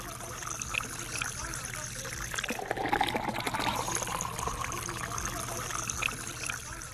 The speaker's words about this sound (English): It uses granite to purify the water. We have 2 buckets. The top bucket contains the granite, and then the lower bucket is a reservoir for the safe water. So they pour water on the top bucket, and then the whole filtration happens in the granite.